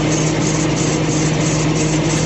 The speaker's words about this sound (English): listen to this sound. My Uncle Doug is letting me borrow his Crown Vic